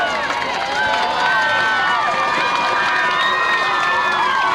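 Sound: stadium crowd cheering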